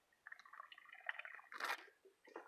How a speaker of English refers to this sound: Take another sip.